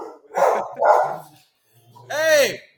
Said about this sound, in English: I see your dogs have some thoughts. Wow.